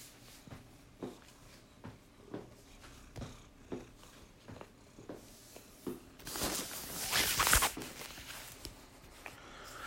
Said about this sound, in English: My cat keeps walking over top of the phone.